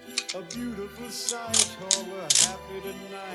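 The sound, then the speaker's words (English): Scissors snip through material, cutting out a nutsack shape, in a few crisp clicks spaced unevenly, with a steady humming, voice-like tone running underneath. “Cutting out the nutsack. Now be really careful when you do this, because scissors next to nutsacks, real or fake, It's very dangerous.”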